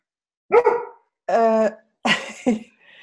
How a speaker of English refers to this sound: Something with the dog, because I just heard your dog. Yeah, yes, Max. Maybe Max wanted to say something.